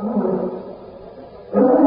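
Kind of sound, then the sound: animal, lion roar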